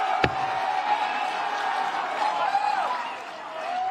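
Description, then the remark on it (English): A crowd applauds and cheers to encourage a fighter, in a steady, moderately loud wash of clapping and voices, with a sharp thump right at the start and the noise dipping briefly near the end. “And applaud him and encourage him, because we want a fucking war.”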